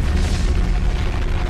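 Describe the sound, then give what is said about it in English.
A volcanic eruption, with magma breaking through the earth, roars in a steady, heavy rumble, deep and loud throughout, with dense low booming churning underneath and no voices. “So basically that magma had broken through the earth, and you would have seen it starting to come up in these big billowing clouds of ash”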